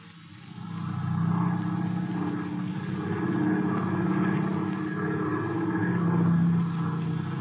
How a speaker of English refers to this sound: Where's Mr. Slattery going in the plane? Yes, what do you know about this? Why did he take the plane?